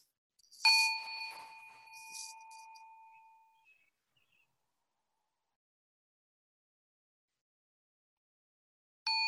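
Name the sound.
meditation bell being struck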